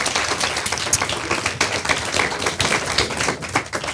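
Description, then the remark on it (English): An audience claps steadily after a closing prayer, a dense patter of many hands with scattered sharper claps standing out, at a fairly loud level with no voices over it. “Give them another round of applause.”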